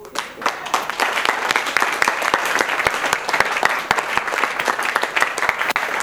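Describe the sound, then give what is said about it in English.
An audience claps steadily for several seconds, a dense patter of many hands with sharper individual claps standing out, loud and continuous without pause. “Oh, as you clap, the blessings are falling deep.”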